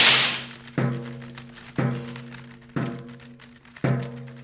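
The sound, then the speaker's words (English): A whip cracks four times in a steady rhythm, roughly once a second, each snap sharp and fairly loud over a low background hum, with no one speaking; a man cracks it while walking up and down the center aisle of a writers' room. “Why is that man walking up and down the center aisle with a whip?”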